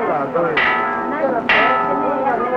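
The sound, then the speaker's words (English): A loud warning bell in a Godzilla film scene clangs twice, about a second apart, each strike ringing out with bright, lingering overtones over a dense, busy background. “I like how Steve starts to say something about them, like give a little information, and then the warning bell that trilobite, Godzilla...”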